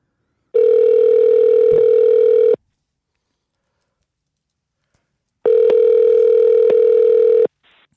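A phone call to a guest rings out on the line: two long, steady electronic ringback tones separated by a few seconds of silence, loud and clear with no voices.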